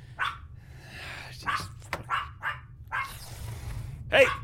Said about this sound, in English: Hey! Zip it. I don't want to hear any more barking from you. You understand me? No more!